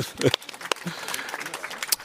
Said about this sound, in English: Applause. Well done.